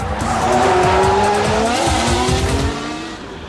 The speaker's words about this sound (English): Shall we give the first engine a tickle? Heck yeah!